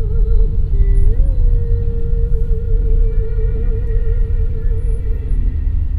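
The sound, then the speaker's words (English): Heavy traffic of buses and jeepneys rumbles steadily past a taxi headed to the airport, with deep engine noise from the large vehicles and a sustained tonal hum riding over the continuous low roar. “As buses and jeepneys rumble by,”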